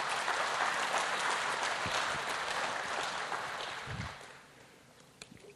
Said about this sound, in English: Amen. That's worth a clap. Praise God.